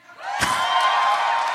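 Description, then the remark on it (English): An audience bursts into cheering and whooping, cheering if they think the host will enjoy the new Star Trek movie. A dense, sustained roar of many voices rises quickly and holds steady, with a sharp clap-like hit near the start. “Okay, now cheer if you think I will enjoy it.”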